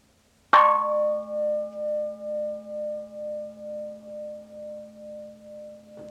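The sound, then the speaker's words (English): A single gong is struck once and left to ring, its deep metallic hum wavering in slow pulses as it gradually fades. No one speaks over it. “especially if you don't have a gong, we can use what are called in the Sanskrit language mantra”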